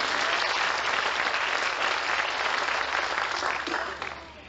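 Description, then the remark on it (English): A crowd applauds together to give Jesus a clap, a dense, steady wash of many hands clapping at once that holds strong for several seconds before tapering off at the end. “Will you give Jesus a clap because you love him?”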